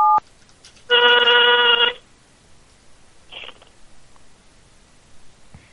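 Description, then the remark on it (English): A short electronic beep opens, followed by a loud one-second burst of harmonic phone tones, then faint tapping and rustling as someone handles a mobile phone. “Messing around on my phone.”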